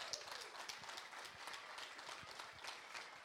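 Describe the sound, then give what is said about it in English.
An audience applauds the eight finalists of a competition steadily, a dense patter of many hands clapping at once that holds an even level for the whole few seconds, with no voices over it. “Give a nice round of applause to the eight finalists.”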